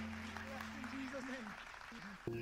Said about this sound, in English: Praise God. Give the Lord a great hand clap of praise.